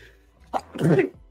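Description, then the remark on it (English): A single loud sneeze, apparently from an allergy to paints: a quick sharp intake of breath followed by an explosive, breathy burst that fades within half a second, with no talking around it. “Bless you. Apparently I'm allergic to paints, but I got them anyway.”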